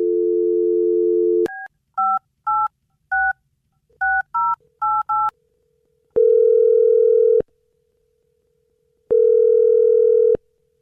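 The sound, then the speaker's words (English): A steady telephone dial tone, then a quick run of eight or so touch-tone key beeps as a host of The Jubal Show dials a listener's phone number, followed by two long, clear ringing tones with pauses between them. No one speaks. “I'm going to dial her in the phone number right now, okay?”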